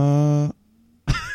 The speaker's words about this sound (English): Your dog's snoring, Mike. Yeah. Yeah, Gizmo. It's a tired dog. Yeah. Is the snoring getting picked up?